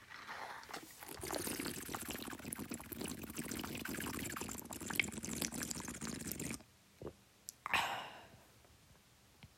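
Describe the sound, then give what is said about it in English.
Water pours steadily into a glass for several seconds, a loud continuous gush that stops abruptly, followed by a couple of faint drips and a light clink. “But I need water. You guys are gonna... I'm gonna... piss you off.”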